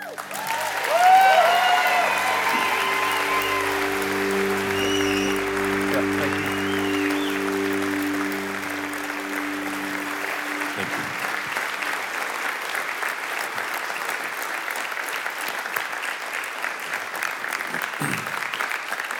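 A church audience at Westridge Church breaks into sustained, loud applause with scattered cheers for a pastor as he walks up, a steady dense clapping wash that holds for the whole stretch while organ-like tones sound underneath during the first half.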